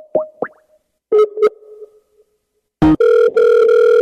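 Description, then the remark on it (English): A few short electronic blips and tones from Skype, then a steady, loud outgoing ringing tone with a brief dip as a phone number is called on Skype, clear with no one talking. “I usually call his phone number on Skype, not his actual Skype.”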